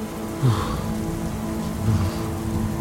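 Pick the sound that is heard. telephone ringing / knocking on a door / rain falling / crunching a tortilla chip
rain falling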